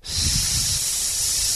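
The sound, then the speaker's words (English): A loud, steady hiss of a vacuum leak from a large line to the PCV valve under a car hood, sharp and airy, running unbroken over a low engine rumble with no voices. “When you opened the hood, all you heard was this.”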